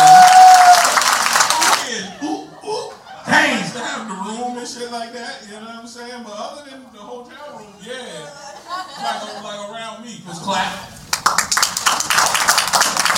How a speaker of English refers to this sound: Y'all clap it up